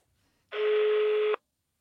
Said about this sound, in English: Well, that sounded a lot like a foreign ringtone to me, but the call ended on one ring.